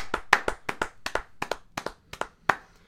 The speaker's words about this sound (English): Hey, clap it up.